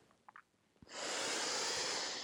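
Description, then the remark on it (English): A deep, drawn-out breath in through the nose during a guided breathing exercise, loud, rising into a steady rush of air after a couple of small sniffs; no one speaks. “Okay, so if you're listening, I want you to go ahead and take a breath in”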